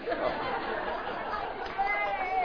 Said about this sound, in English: See, all the old folks are cheering.